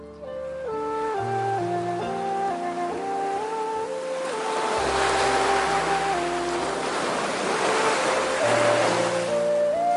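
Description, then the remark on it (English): Ocean waves wash and surge steadily beneath a gentle, sustained musical melody, the rushing surf swelling louder through the middle and end. No one speaks. “With that, he mounted the back of the turtle and began the return to his journey above the waves.”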